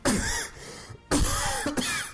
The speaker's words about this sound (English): Just know your editing skills, so he's got a cough there. Ooh, need to cut them out.